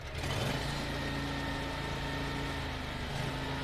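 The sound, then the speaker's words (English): A large 4500 lawn tractor engine runs steadily as it drives around, a continuous low mechanical drone with a slight pitch rise near the start and again toward the end, no voices. “And it's very powerful when it drives around. You can hear the size of the engine.”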